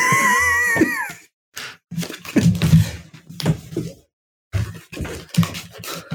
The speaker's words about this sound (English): That was our little, well, not so little these days, rescue cat Tinsel, who we saved last year, who has decided that she's just pushed the door open, cushions and everything. And it was, and she just sat there going, why can't I get in to see Dad?